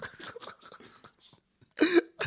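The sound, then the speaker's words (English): A sudden cough breaks out after some quiet breathy shuffling: one harsh burst followed quickly by a second shorter hack, loud and abrupt. “Like, I do not feel a cough coming.”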